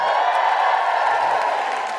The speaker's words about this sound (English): Big round of applause for the wonderful Alison Spittle.